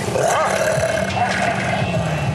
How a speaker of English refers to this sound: Oh, my God. They are mauling me! The pack of wild dogs are mauling me!